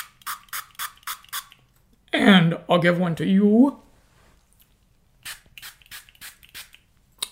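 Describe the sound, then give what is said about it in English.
A pump spray bottle of nootropic spray is spritzed in a quick run of short, hissy bursts, then a person speaks briefly, followed by another rapid series of crisp sprays. “And I'm going to have a spray first.”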